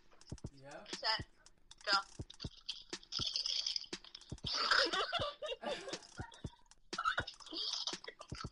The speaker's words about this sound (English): Wait. I'm gonna put some chips in my mouth.